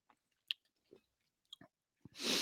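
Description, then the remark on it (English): Sticky chewing of a handful of stale, hot habanero jelly beans eaten all at once: a handful of short, irregular crunches and mouth smacks, then a sudden loud burst of breathy, rushing noise at the end. No one speaks. “Eat them all at once. Oh, this jelly bean's stale as fuck and hot.”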